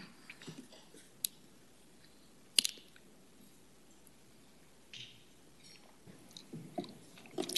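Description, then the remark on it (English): Someone quietly sips water during a committee meeting: soft wet mouth sounds and swallows, with a few sharp little clicks scattered through otherwise hushed surroundings. No one speaks. “The project, I'm just going to take a sip of water.”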